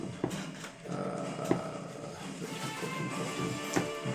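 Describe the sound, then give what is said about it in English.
Dice rolled for an attack clatter on a table in a few sharp, separate clicks and knocks spread over several seconds, with a steady hum underneath and no talking. “Come on, dice cooperate.”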